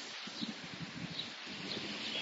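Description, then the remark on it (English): Keys jingle faintly in athletic shorts with each step as a person walks early in the morning, a soft rhythmic rustle and clink over steady hiss. Light metallic ticks sit above muffled fabric swishes. “You can hear the keys jingling in my athletic shorts as I walk.”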